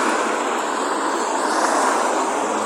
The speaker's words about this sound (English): Right. Got to be careful here. Lots of cars and things.